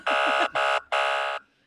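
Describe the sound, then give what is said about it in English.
A loud, harsh buzzer sounds three times to flag the use of an acronym: two short blasts followed by a longer one, with a flat, rasping tone and no voices. “I'm sure Ted's going to buzz me on that one.”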